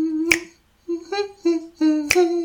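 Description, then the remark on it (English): Two sharp finger snaps, about two seconds apart, crack over someone humming a steady, mid-pitched tune in short phrases. “Just quit snapping.”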